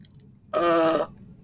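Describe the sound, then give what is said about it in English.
A single short, voiced yawn, a steady groaning tone lasting about half a second that rises abruptly out of quiet background and cuts off just as suddenly. “Sorry, I just yawned just now.”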